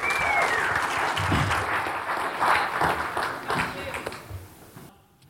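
A church audience on the south coast of South Australia applauds a speaker steadily for about five seconds, a dense wash of overlapping claps with a few cheers mixed in, holding loud before tapering off and ending abruptly.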